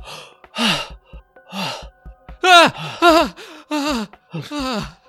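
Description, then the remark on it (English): A sudden burst of loud gasping as someone snaps up suddenly from a nightmare, then heavy, ragged breathing: about seven strained, partly voiced breaths in quick, uneven succession with short pauses between them, and no talking. “So, Thalias, towards the end of your watch, you might be startled by Uhtred, who just snaps up super suddenly, gasping, breathing heavily.”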